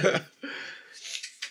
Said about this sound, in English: Don't mind me, y'all. We might have to edit that out. Now I gotta talk loud over it, you know what I mean? Yeah, yo, just talk while I blow my nose real quick.